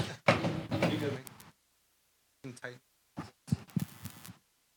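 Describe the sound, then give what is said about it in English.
A door shuts hard with a loud, abrupt thud near the start, followed by a couple of shorter bursts of talking and rustling. “Sorry, I was raised in the barn. Did you leave a door open?”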